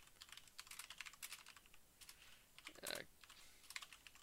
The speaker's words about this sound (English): Can't believe I'm typing grilled cheese.